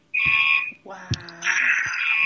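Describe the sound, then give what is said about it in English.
A building fire alarm, set off by a hazer in use, buzzes loudly and steadily, a harsh sustained electronic tone that fills the space, with a few brief knocks and some indistinct background voices beneath it. “And I'm sorry if you hear buzzing right now. I think that they're using the hazer and set off the fire alarm in our building again.”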